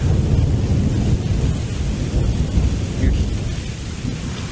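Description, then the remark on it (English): Heavy rain pours steadily in South Florida while deep, rolling thunder rumbles underneath, loud and continuous throughout with no voices. “You're watching the RP Show live from South Florida, rainy South Florida”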